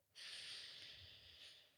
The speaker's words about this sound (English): Oh, sniff test.